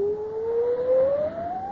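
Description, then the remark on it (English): Wind whistles in a long, mournful wail during a storm aboard a ship, one clear tone sliding slowly upward in pitch over a soft rushing hiss, with no voices present. “It is but a whistling of the wind.”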